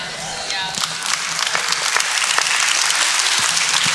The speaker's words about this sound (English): If you had really received that, you wouldn't just be clapping. You'd be standing and shouting.